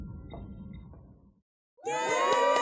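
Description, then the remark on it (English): A low, murmuring crowd noise fades to a brief silence, then a loud burst of high-pitched children's voices cheering and shouting together until the end. “Please don't put kids into this category.”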